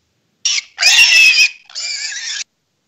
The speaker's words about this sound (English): I never understood what the pig noise means. That's for the everything. That's the pig. Oh yeah. It was for the farmer.